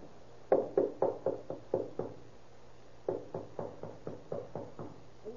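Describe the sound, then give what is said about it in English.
Two quick runs of firm knocking on a room door, about eight or nine raps each, separated by a short pause, moderately loud with no voices. “Better be careful. Knock first and tell him what he says is all right.”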